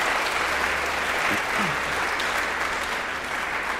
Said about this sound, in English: Thanks, guys. You can sit down. Oh, yeah. Give him applause. Applause.